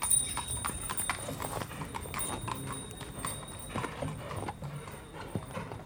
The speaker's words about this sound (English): You can hear horse and carriages, which are two separate recordings.